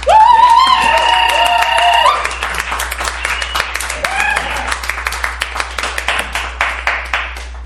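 A live audience bursts into applause with loud whoops and cheers, clapping to vote for the winner of a debate, then the clapping thins out into scattered, individual hand claps toward the end.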